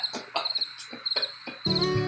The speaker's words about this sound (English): Can you do crickets? Do they have sound effects on?